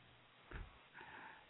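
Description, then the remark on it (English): A short breath sound from a caller from the 613 area code over a phone line, through a narrow, phone-like channel: one quick sniff-like inhale, then a softer, steady breath out, with no talking. “I can hear you breathing.”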